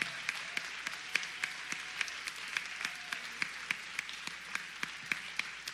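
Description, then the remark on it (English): A church audience at a morning service applauds new disciples as they stand, the quick, dense clapping holding an even level for several seconds with sharp individual claps popping out of the wash. No one speaks. “And so I'm going to ask that all of our new disciples that are present this morning, would you please stand so that folks can give you a major round of applause?”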